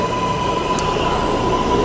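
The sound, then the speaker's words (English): An L train rumbles steadily through a New York subway station, a dense low roar with a sustained metallic tone and faint high squeal, loud, with no voices. “I just got off the L train”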